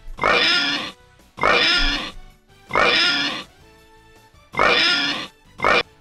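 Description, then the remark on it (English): Loud, squealing pig oinks come in a steady series: four long snorts followed by a short clipped fifth, separated by brief quiet gaps with no talking. “will grade in oinks.”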